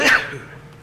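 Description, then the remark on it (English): A single sharp sneeze bursts out loudly at the start, then trails off quickly into a quiet, murmuring room tone. “Must be good while I'm sneezing.”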